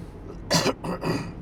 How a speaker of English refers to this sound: Sorry about the cough today. It's one of the things with the season, I'm afraid. Just got a tickly throat.